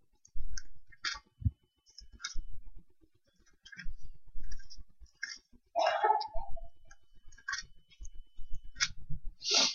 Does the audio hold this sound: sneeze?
no